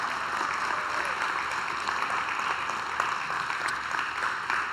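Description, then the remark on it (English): An audience claps in a morning round of applause celebrating the people who worked hard to make these days happen, a dense, even patter of many hands that stays at a constant level for the whole stretch without any voices. “Would you give them a round of applause and celebrate them this morning?”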